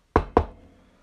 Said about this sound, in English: Security knocking on the door. It bursts open.